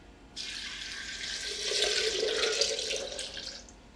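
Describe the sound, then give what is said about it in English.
A little over 4 cups of water pours steadily into a container for a few seconds, to be blended with soaked nuts, a broad splashing rush that deepens slightly in pitch as it fills, then tapers off near the end. No one speaks. “This is a little over 4 cups of water.”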